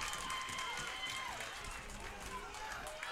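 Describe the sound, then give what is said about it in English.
Richmond fans, all up on their feet during a game, clap and stomp on metal bleachers, a dense, steady rumble of many feet and hands, with indistinct voices mixed in. “Now the Richmond fans are all up and clapping, stomping on the bleachers.”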